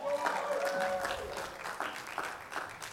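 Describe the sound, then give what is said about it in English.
An audience breaks into steady, dense applause to welcome a woman speaker, many hands clapping together at a fairly loud level, with a brief voiced cheer or whoop rising over the clapping near the start. “so I want you to welcome her with a huge round of applause.”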